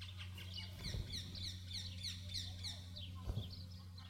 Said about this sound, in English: Could you hear that? In the trees right here on this mountain, there are birds chirping. And they're preaching a sermon that is 1,000 times better than mine. Do you know why they're chirping? Because they're alive.